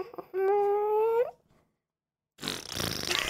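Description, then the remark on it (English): A voice imitates the fart noise a car makes when its air recirculation is switched on, a steady, buzzy tone lasting about a second that bends upward at the end. After a short silence comes a loud, rough burst of noise. “Oh, my car had this feature, which I think most cars have, where you can recycle the air.”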